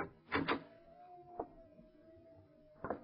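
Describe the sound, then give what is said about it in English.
A door handle rattles with a couple of quick mechanical clicks, then a sharp knock-like clack, a faint sustained whine, and another latch click as the door is opened. “Try the door, Lamont.”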